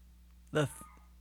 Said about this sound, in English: Oh man, my dog's barking. That's not a euphemism. My actual dog is barking. I bet he's downstairs.